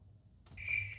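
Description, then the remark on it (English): Crickets chirp in a steady, high-pitched trill that begins about halfway through and carries on to the end, fairly soft, with a low background hum and no talking. “Crickets. Literal crickets.”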